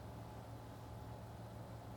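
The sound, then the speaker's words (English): A steady, low mechanical hum of air conditioning, with a constant tonal drone and a broad wash of noise, holding an even level throughout with no voices. “Yes, you can hear the air conditioning.”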